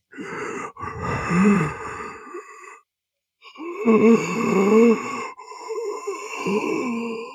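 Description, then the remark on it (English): A person imitates a beast's heavy breathing: two long, raspy, groaning breaths split by a brief pause, with a third shorter one trailing off, loud. “can hear the beast breathing down. Now you haven't seen him yet, but he's breathing. And what does the breathing sound like?”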